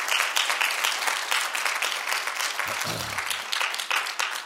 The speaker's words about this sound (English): We appreciate you very much and love you. And let's give them a round of applause this morning.